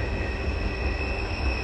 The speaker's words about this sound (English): like, damn, I live next to a train.